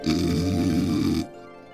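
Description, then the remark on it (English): A giant snores: a single loud, rough snore with a snorting rasp, low and rumbling, holds for just over a second before cutting off abruptly into near silence. “While Basil snored and snorted, Tracy motioned for Jack to make a break for it.”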